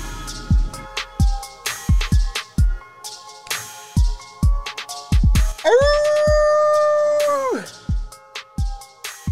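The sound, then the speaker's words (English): A human voice imitates a wolf howl into the microphone as an intro, a single sustained rising-then-falling cry of about two seconds, loud, turning into a groan, set among sharp rhythmic thumps and hits before and after. “Wolf noise into a groan into the mic.”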